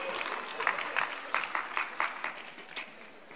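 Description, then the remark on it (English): The audience at a Christmas Eve service at Beaches Chapel claps for the church band, a dense patter of many hands with sharper individual claps standing out, sustained at a moderate level for a few seconds. “Can we give a round of applause to our band?”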